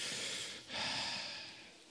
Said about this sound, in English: Yes. Yes. Breathing. Excellent. Those help me be less afraid too.